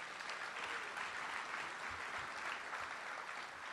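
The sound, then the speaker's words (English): An audience applauds the worship team steadily, a dense wash of many hands clapping at an even loudness throughout, with no voices standing out above it. “I want to give... a special thank you to our worship team this morning. Give them a hand.”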